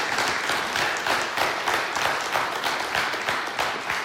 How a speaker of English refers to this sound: And so, City Tribe, would you give a huge round of applause for anybody who may have made that declaration today?